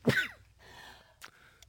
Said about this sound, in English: I'm going to sneeze.